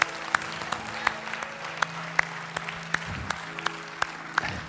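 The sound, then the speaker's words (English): An audience applauds, giving the Lord a hand clap of praise after a prayer, in a steady, dense wash of clapping, with a few sharper individual claps popping out regularly, over a sustained low musical tone held underneath. “Come on, give the Lord a hand clap of praise right now.”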